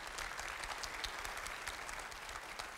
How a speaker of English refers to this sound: Isn't this awesome? Yeah, praise God. Yeah, let's clap it up.